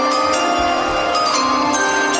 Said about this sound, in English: By the way, wasn't a big fan of the chime. But did you hear? Listen very closely to the chime here,